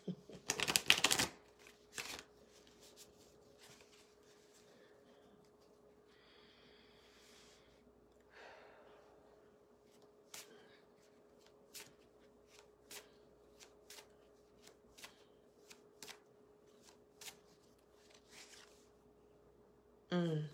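A More Manifesting card deck is shuffled, opening with a loud riffle burst, then a long run of soft, irregular card flicks and snaps, ending with another brief riffle.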